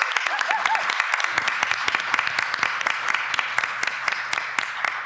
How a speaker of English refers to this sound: Round of applause.